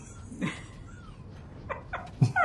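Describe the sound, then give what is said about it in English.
A person imitates an angry cat, producing a few short hissing, spitting and yowling bursts in quick succession, moderately loud, with no other talking. “my ears are flattened and my hackles are raised. And I'm just sort of going”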